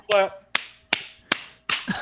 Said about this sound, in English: I would clap loudly, but it would screw up all my levels, so I'm not going to. Golf clap? Golf clap. Golf clap.